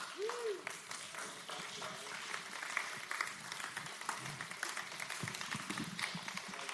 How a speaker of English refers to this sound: Why don't we give these guys a hand and thank them. Love you guys. Thank you. Come on, stand up and give them a clap.